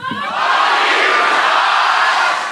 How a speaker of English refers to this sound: Can you guys all quickly yell at my agent, "Fuck you, Josh"?